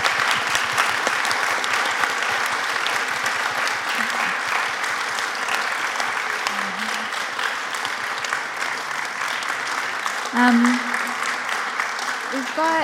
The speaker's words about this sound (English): Thank you so much, everybody. Give everyone a round of applause.